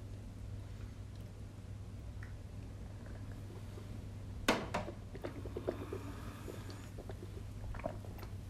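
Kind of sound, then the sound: food or drink, sipping a drink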